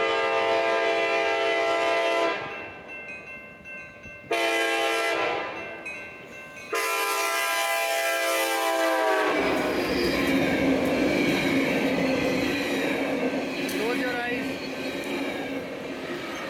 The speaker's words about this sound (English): This next catch is a short video from Piyush Garg, who caught the eastbound ACE train in Pleasanton.